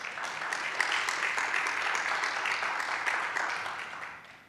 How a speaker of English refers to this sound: Well, if you ask me, I believe that we need to give another round of applause for everybody who helped us worship this morning. One more time.